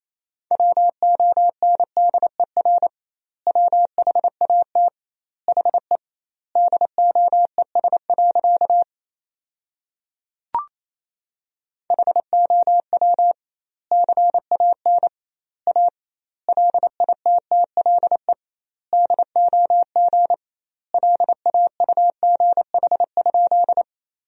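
Morse code sent at 28 words per minute with doubled word spacing, sentences built from the top 500 words: a steady mid-pitched tone keyed in rapid dot-and-dash bursts, grouped with short pauses between words and one longer gap broken by a click.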